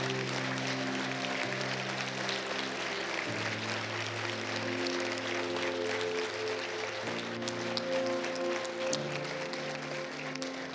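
An audience applauds steadily for about ten seconds to thank people for their witness, a dense, even crackle of many hands clapping, with low sustained tones holding underneath that shift pitch a few times.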